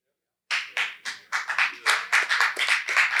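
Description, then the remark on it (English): An audience claps after a half-second of silence, starting with a few scattered claps that quickly build into steady, overlapping applause, bright and crisp, continuing to the end. “Y'all clap, but that convicted me, boy.”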